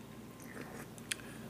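A quiet sip of El Cristiano tequila: soft wet mouth noises over a faint background, ending in one brief, crisp click-like slurp. No one speaks.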